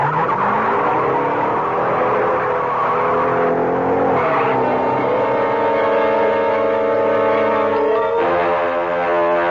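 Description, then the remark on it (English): A getaway car engine starts and roars loudly and continuously, its harmonic drone climbing and dipping in pitch as it revs hard, with a screeching squeal layered over it and no voices. “Get behind the wheel, Zipper.”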